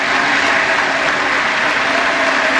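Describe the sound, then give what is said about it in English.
Sustained, dense applause from a large crowd in the House chamber after Kevin McCarthy of California is nominated for Speaker, steady and loud throughout with no pauses, a continuous wash of clapping hands. “Clap clock. Put him on it.”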